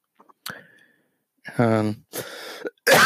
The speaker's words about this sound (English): I hate coughing on air.